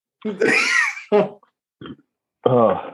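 A run of guttural burps caused by carbonation: a long rumbling belch, a short sharp one, a faint brief croak, then a final drawn-out, low-pitched burp, with no talking in between.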